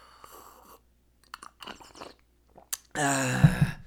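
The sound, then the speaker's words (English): A person imitates noisy soup drinking: scattered wet mouth clicks and smacks, then a loud, drawn-out slurp lasting nearly a second at the end. “it's drinking soup, yeah. That slurping sound.”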